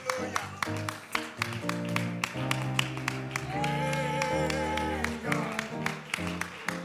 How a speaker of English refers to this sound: Let's all clap our hands to Jesus.